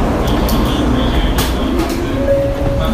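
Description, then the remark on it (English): A bullet train idles loudly at a JR station platform as passengers queue to board, a steady rumble with brief hissing bursts and a thin electric whine rising near the end. “I would let the people off first, and then we'll get on to the freaking bullet train.”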